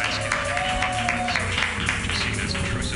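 An audience claps steadily and loudly for a comedian, a dense, continuous wash of hand claps with a few faint cheers mixed in, holding at an even level throughout.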